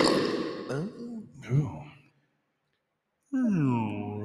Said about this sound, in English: I'm not drinking anything carbonated. It's hard. It takes a lot to work up a burp, and then whenever I feel it, it's. Doesn't come you out strong because you gotta like guzzle.